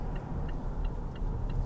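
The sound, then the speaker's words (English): A car's turn signal ticks in a steady, even rhythm, five crisp clicks, over the low continuous rumble of the car moving in busy freeway traffic as it changes lanes. “Sorry, I'm just changing lines. It's quite busy.”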